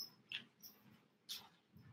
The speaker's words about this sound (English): The dog is crying.